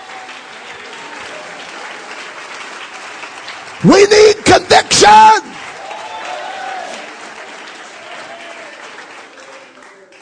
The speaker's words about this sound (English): Oh, let's clap our hands.